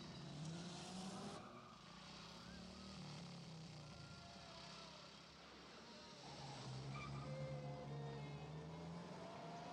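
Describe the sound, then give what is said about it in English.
Cars driven by three friends on a road trip roar past with rising and falling engine tones while tires squeal sharply in bursts, the loud, continuous motor noise swelling again toward the end. “So I leave it up to you to decide which one of us was in which car.”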